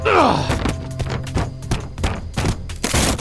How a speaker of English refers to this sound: We hit the first corner of the stairs with a thud. We wrestled more until we rolled down the next section. I hit the next corner.